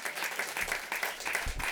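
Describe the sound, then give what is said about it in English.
Steady audience applause for a comedian at Alberta Street Pub in Portland, Oregon, a dense wash of many hands clapping at a moderate level with no voices rising above it, holding evenly throughout. “Give yourself another round of applause for being here, please.”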